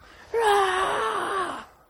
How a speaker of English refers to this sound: Yeah, you get that good stretch, man. Sometimes you get that good yawn going.